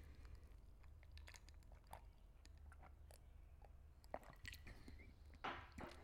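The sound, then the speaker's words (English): Sipping of an almond milk iced coffee: soft wet slurps, small liquid clicks and swallowing sounds scattered over six seconds, quiet and intimate, with no talking. “I need a sip break of this almond milk iced coffee.”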